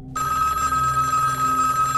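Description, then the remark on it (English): A telephone rings loudly, starting after a brief moment of silence and sounding as one steady, continuous ring with no one speaking. “I walk to my phone.”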